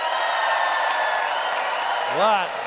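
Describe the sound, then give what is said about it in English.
An audience votes by applause for Eric Peterson's pro-nature side of a radio debate, clapping and cheering in a steady, dense wash, with a loud rising-and-falling whoop breaking through near the end. “It is up to you to decide, audience, by applause, who thinks that Eric's pro-nature program points were perfect.”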